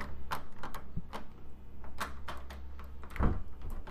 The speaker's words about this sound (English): Because you hear something rattling at the door.